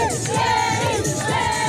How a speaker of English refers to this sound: That was followed by an open top bus tour of the North Strand where crowds waited to celebrate the arrival of Ireland's latest gold medal winner.